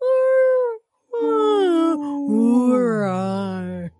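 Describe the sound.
Voices imitate whale calls with long, sliding, moaning tones: one drawn-out wail, a brief pause, then a longer wavering cry that swoops downward, loud.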